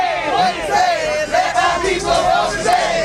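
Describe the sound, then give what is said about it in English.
A lively crowd at a statewide voting rights bus tour event in Florida, preparing to hit the streets, cheers and whoops energetically, many voices overlapping in loud, rising shouts that swell in waves, sustained throughout. “An enthusiastic crowd prepares to hit the streets to make a difference.”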